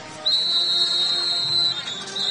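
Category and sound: signal or alarm, referee whistle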